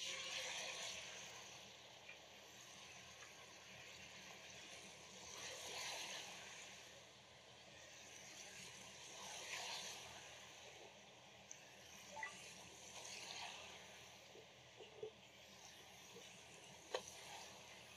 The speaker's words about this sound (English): Just gonna pour in the chicken.